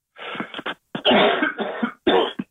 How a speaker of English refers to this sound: I've got a bad cough.